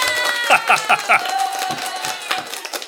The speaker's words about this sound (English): I think I'm just looking for some applause, actually, since I'm not out being Hannah Montana.